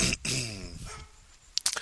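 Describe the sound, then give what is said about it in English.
A neighbor's dog barks over the wall, heard outdoors, one sharp bark trailing into a drawn-out, tonal whine, followed by a few faint clicks and taps. “I'm 2 seconds into the show, and this motherfucker's got to come out and start barking over the wall and shit.”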